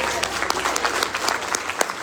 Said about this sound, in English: Can you go ahead and clap?